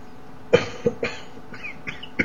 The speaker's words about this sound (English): Actually trying not to cough because I can't mute the webcam